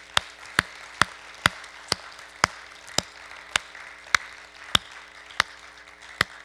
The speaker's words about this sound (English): Could someone say hallelujah? In fact, I think you should just clap. Let's just thank him for that.